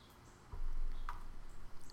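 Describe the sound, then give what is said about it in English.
Soft outdoor ambience of birds and rain: a steady, faint patter with a few brief chirps rising above it, and no one talking. “Maybe you can listen to the birds and the rain.”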